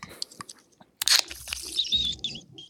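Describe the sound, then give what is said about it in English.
A sharp crack of a Guinness can opening, followed by a squeaky, chirping hiss from the can's nitro widget that rises and wavers for over a second, almost bird-like, before fading out. “It's the nitro. Nitro canister in the Guinness.”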